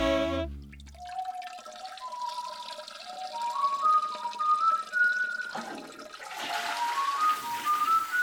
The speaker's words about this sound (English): Well, I heard the water running from the bathroom, but it seems like only one of your hands is wet.